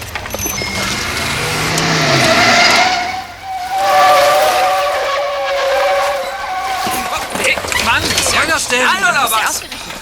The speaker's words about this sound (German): Sie hatten das Gelände fast passiert, als auf einmal ein Auto mit heulendem Motor an ihnen vorbeiraste, scharf bremste und sich ihnen quer in den Weg stellte.